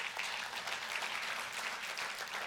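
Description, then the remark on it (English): A crowd applauds steadily, a dense wash of many hands clapping at once with no pauses, sustained and fairly loud throughout, with no voices over it. “We're not, absolutely it deserves an applause.”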